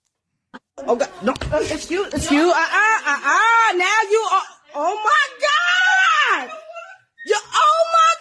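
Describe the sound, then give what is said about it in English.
A woman screams and sobs in long, wavering wails, loud, with brief pauses for breath and a few choked gasps between the cries, in a Victoria's Secret store after another woman tried to hit her. “In the beginning she tried to hit her. That's why she's screaming.”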